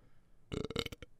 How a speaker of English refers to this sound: Burp brought to you by Liquid Death. Sparkling water straight from the Alps.